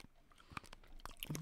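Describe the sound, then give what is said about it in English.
Quiet crunching as the hard seed of a fresh fruit is bitten, a few crisp irregular cracks with soft chewing between them and no talking. “You heard the crunching.”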